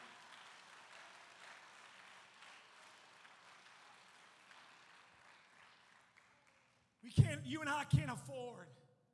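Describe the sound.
An audience claps hands to give God praise, a steady, dense wash of applause that gradually fades over several seconds, then a single voice breaks in loudly and speaks.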